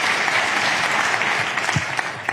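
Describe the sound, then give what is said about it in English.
A socially distanced crowd at a climate change event applauds a speaker for saying "blah, blah, blah", heard in a played recording: a dense, even wash of many hands clapping at once, holding at a strong level throughout with scattered sharper claps poking through. “idiots in a crowd that are all socially distanced, talking about climate change, and they literally applaud her for saying blah, blah, blah.”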